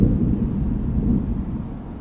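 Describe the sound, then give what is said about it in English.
A deep, continuous thunder-like rumble, such as shaken sheet metal makes, rolls steadily for about two seconds at fairly high volume, heavy in the low end, with no voices. “And finally, if you don't have the sound of thunder in your library, you can shake a big piece of sheet metal to create that sound.”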